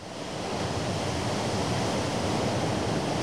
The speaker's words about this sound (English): Was that the ocean? He is just living the life of luxury now. Do I hear the ocean? Yeah, I think my ear's up to a conch shell right now. What is that?